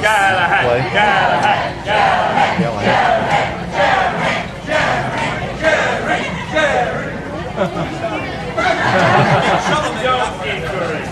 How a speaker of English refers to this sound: All right, now the crowd had assembled to watch this secret challenge. They began to chant for Galahad's name.